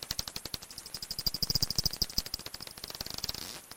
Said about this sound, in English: That's the species called Dorbenton's bat.